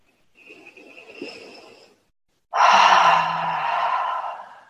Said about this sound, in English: And just take 3 deep breaths. So we're going to breathe into the belly and expand and open through the chest. And take a deep exhale as you breathe out.